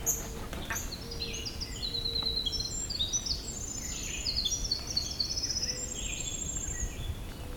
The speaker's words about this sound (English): Crows. Interesting. The crow being chased by eastern kingbird.